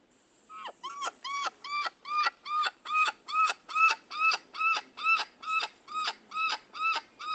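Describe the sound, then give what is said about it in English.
A bird calls repeatedly, about sixteen short, evenly spaced notes in a steady rhythm, each one bright, mid-pitched and harmonically rich, fairly loud with no voices over it. “But when they do make a sound, this is what they sound like.”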